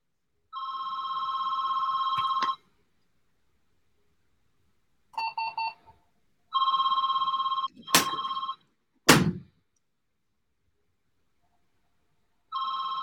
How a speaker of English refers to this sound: They still make fax machines? What? They still make fax machines? Yeah, we have one. I don't know why it doesn't stop ringing. Not answering.